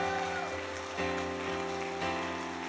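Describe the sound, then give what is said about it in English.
A crowd claps for Jesus continuously in a dense, steady patter over sustained musical tones, with slight swells in loudness about every second. “Come on, you're clapping for Jesus.”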